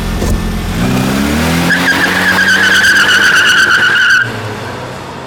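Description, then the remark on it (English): A car engine revs hard as tires screech loudly in a long, sustained squeal, then the noise cuts off abruptly, leaving a low rumble. “Oh shit, start the car! Start the car! Peel out!”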